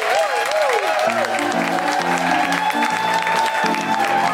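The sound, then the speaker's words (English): An audience claps and cheers for the performers at the end of the comedy show Global Pillage, a dense, steady wash of applause that fills the whole clip, while a bouncy musical tune with stepping bass notes plays over it. “Please give it up for Heidi Reagan!”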